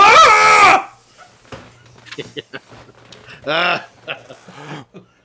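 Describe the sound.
A person imitates a woman's shrill scream, loud, lasting under a second, followed by quieter casual talking and a short vocal outburst.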